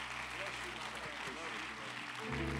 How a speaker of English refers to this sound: Come on and give a hand clap offering unto the Lord.